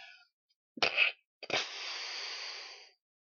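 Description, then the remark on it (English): A sneeze from a person with coronavirus sniffles: a short, sharp burst of breath, a brief pause, then a second explosive burst that trails off into a long, steady hiss of exhaled air. No talking. “Excuse me, I have some coronavirus sniffles.”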